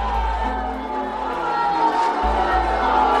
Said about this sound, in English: Southie booed and jeered Mayor Flynn last night